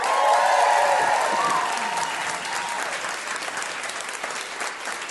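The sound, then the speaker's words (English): A crowd at a live show recording bursts into steady applause from those who have heard the show before, many hands clapping in a dense, crackling wash that starts loud and gradually thins, with a few whoops and cheers over the top early on. “Okay, on the other end of that scale, give us a round of applause if you have heard the show before.”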